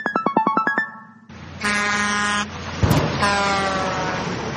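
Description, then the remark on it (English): A truck horn honks in long, loud, sustained blasts, following a quick run of short beeping toots. No voices are heard. “The little bird just got hit by the truck.”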